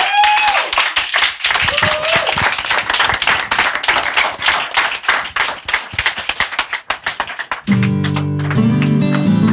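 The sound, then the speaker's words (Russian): A concert audience in a jazz club claps and applauds in a loud, dense burst of rapid, overlapping hand claps that thins out toward the end, where a few tonal music notes begin, during a live concert on Old Fashioned Radio. “Приходите, еще раз аплодисменты”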